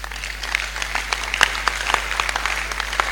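An audience claps for about three seconds, a dense spatter of many hands with a few sharper claps standing out, steady and moderately loud with no voices over it.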